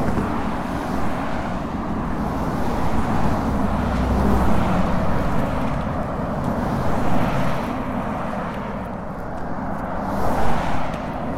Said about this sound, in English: I realized on this highway, you get a 2-minute break of no cars, and then a green light turns and a stampede of cars come, and here they are. Here's the stampede.